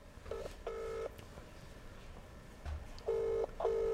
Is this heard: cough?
no